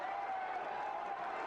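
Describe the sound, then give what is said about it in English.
A steady, dense roar from a wrestling crowd cheering during a match between Tommy and Raven, filling the whole moment without pause, with a faint sustained tone running underneath the noise. “The crowd's loving it.”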